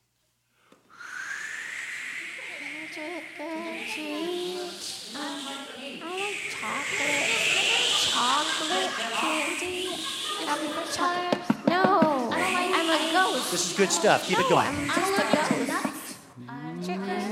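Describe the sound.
Several voices imitate a crowd of excited little trick-or-treaters alongside eerie hissing, whistling and owl-like hoots, a layered vocal imitation of spooky noises for Faces for Radio Theater, running continuously, with one person briefly speaking over it.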